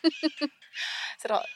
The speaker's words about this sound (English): They were hanging around earlier. I was hoping he wouldn't come back. Oh, it's a sea. It's like a some kind of gull.